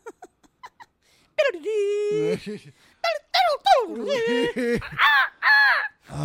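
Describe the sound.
Human voices imitate birds with loud, nasal squawks and caws that rise and fall in pitch, coming in a quick run of several calls after a few soft clicks.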